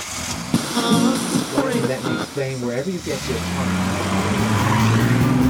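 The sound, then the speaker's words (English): Road traffic with car engines droning while stuck in traffic on the way to work, then one engine revs steadily higher in pitch for several seconds. Indistinct voices are mixed in over the first half. “Well, we've all been here, particularly since the pandemic ended, stuck in traffic, on the way to work, wishing we could still be working from home in our sweatpants.”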